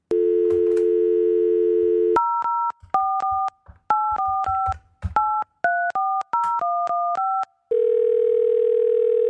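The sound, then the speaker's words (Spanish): A steady telephone dial tone gives way to a quick run of paired dialing beeps, about a dozen keypresses, then a sustained ringing tone of an outgoing call placed to record a conversation, with no voices. “Pero ya, vamos a llamarle ahora.”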